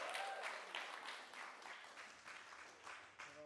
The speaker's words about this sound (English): So give him a round of applause, I think.